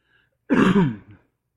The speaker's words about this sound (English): Ooh. That was horrible. You just coughed into your hand. Yeah. It's not productive. There's nothing there. It's on me. Yeah, that looks really disgusting. Yeah, so now my cold has gotten to the point where it's just an unproductive cold